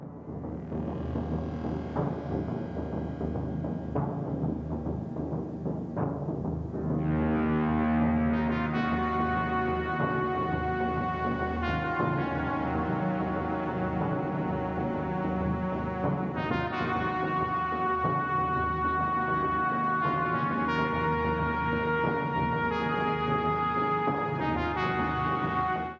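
A synthesizer film score plays loud and unbroken: long, sustained keyboard chords over a deep droning bass, the harmony shifting every few seconds. No one speaks.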